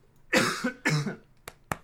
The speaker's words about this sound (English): Sorry, I'm coughing real bad.